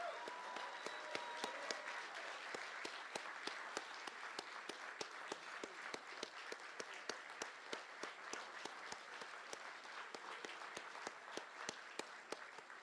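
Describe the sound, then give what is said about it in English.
A crowd applauds steadily for several seconds, honoring retiring Knicks radio broadcaster John Andres, a dense, sustained wash of many hands clapping with sharp individual claps standing out, even in loudness throughout. “And with his recently announced retirement, we'd like to take a moment to applaud Mr.”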